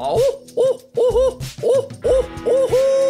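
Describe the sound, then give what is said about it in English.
A person's voice imitates a barred owl, hooting in a rhythmic series of about six calls that rise and fall, ending in a longer drawn-out hoot, fairly loud. “I'm going to hoot like a barred owl, okay?”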